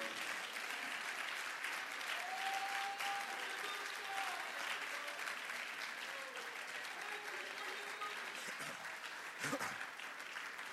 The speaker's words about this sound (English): Will somebody give God a hand clap of praise for everything that he's done for you here?